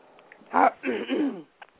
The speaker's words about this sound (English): Well, I'm fighting off a cold, and I get a coughing fit every now and then. I was trying to hold that cough in for about 15 minutes.